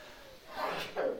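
sneeze

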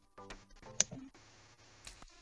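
computer mouse click

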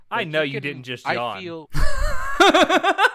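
a yawn

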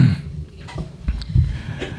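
sneeze

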